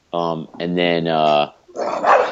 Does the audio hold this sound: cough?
no